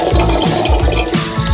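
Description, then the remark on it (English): Water gurgles and swirls down a sink drain, a loud churning rush with rhythmic glugging pulses repeating through the short stretch, no voices present. “Ever find the water runs out of your sink?”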